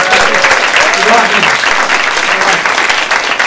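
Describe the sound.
A crowd bursts into steady, sustained applause, dense clapping filling the whole stretch at a loud, even level with faint voices mixed in beneath.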